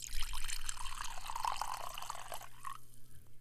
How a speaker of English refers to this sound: I swear that was me pouring whiskey and not using the restroom.